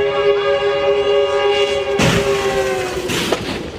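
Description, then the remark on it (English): A loud, sustained train horn blares continuously as a train races toward a crashed plane on the tracks in Los Angeles, its steady chord holding throughout, while bursts of rushing, rumbling noise swell up partway through. No one speaks. “Caught on body cam as that horn blasted, they desperately try to free the trapped man.”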